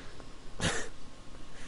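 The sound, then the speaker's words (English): One sharp, wet sniff, a brief breathy rush of air up a runny nose as a person sniffs it back in instead of blowing it, standing out against a quiet background with no talking. “I don't want to blow my nose, so I'm just trying to sniff it back in.”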